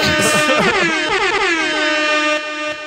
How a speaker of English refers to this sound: Oh, let me tell you people, air horn, hold up.